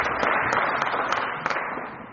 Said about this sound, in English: Can we get like a hand clap, a cheer? Come on.